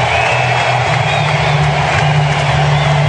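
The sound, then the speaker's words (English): A large baseball stadium crowd roars and cheers for Felix as he takes his cap off, a loud, continuous wall of sound, steady and unbroken throughout without any distinct voices standing out. “Big roar. Listen to this crowd.”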